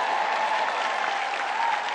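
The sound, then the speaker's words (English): A crowd applauds steadily, a dense, even wash of many hands clapping at full strength throughout, with no voices standing out. “Did you notice how everybody clapped for the good part?”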